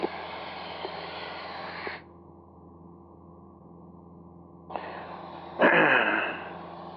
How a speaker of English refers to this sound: See, the airplane can easily be trimmed so that it's completely hands-off flying. We're in a very shallow climb here. A little bit more of a climb.